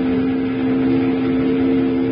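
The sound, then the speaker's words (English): A riverboat steam whistle, sounded by pulling its whistle cord, blows one long, steady, low-pitched tone, loud and unbroken for the full couple of seconds, with a breathy hiss of steam beneath it. “Jingles, grab that whistle cord and pull it.”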